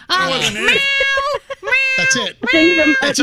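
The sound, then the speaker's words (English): A person's voice does an exaggerated cat meow, three drawn-out, whiny calls in quick succession with rising and falling pitch, loud. “Stop meowing.”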